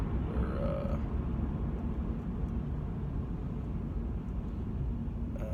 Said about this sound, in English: Traffic here. One of the signs here just said crash in the left-hand lane. Spring Mountain Road.